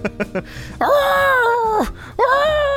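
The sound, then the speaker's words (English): A woman in a tub yells in pain: three quick gasping cries, then a long, loud, wavering wail that drops off sharply, followed by another anguished cry starting up. “She certainly yells a lot.”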